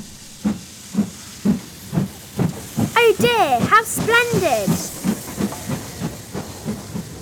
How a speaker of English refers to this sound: It was an express train, and it didn't stop for an hour,